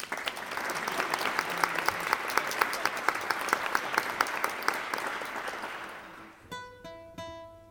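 An audience applauds a speaker being introduced, with steady, dense clapping for about six seconds, then the applause fades out as a few clear, sustained musical notes sound alone.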